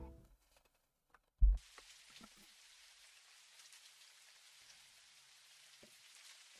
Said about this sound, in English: Light rain has begun.